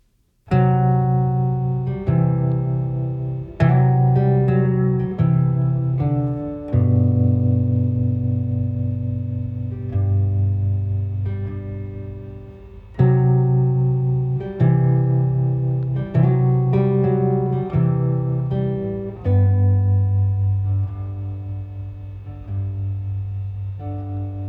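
Instrumental music with sustained, harmonically rich tones, likely a distorted or effected guitar, playing a slow progression of strummed chords that ring out steadily and loudly, with no voices.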